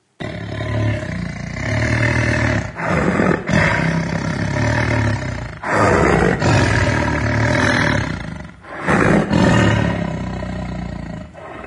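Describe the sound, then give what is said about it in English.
A tiger roars loudly in a series of long, rumbling bursts, about five in all, separated by brief pauses for breath, with no talking. “Fear, in many ways, is like a tiger's roar.”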